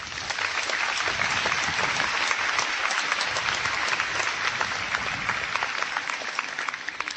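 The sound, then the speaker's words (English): Sustained applause from a large audience at a Princeton class event, honouring the class's community service: a dense steady wash of many hands clapping at once, loud and continuous for several seconds with no voices standing out. “Give yourselves a big applause.”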